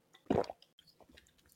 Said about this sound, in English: I think going forward, excuse me, while I ASMR you with a sip of my water.